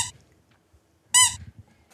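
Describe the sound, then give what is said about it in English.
A loud, sharp, high-pitched squeak of a squeaky toy sound effect follows a faint shorter squeak at the start, with quiet low rumble in between and no talking. “Joe, put in a squeak effect.”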